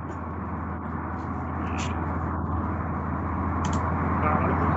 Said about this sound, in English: Oh, is it? It's probably because I got my window open. Sounds like some good city truck noise.